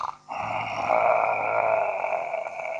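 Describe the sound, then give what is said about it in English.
A person imitates a dog's growl: a steady, rough, sustained rumble with a strained tone, held for a few seconds after a brief pause, with no words spoken. “Right now, they're all looking at me when I do that one.”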